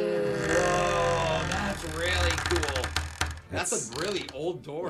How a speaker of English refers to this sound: That's a really old door. Yeah. Wow. They're old keys.